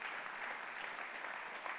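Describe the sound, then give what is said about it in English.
A crowd gives a hand clap for the Lord, clapping steadily, dense overlapping hand claps blending into a continuous wash of applause at a fairly even level for a couple of seconds. “Give the Lord a hand clap if you got that.”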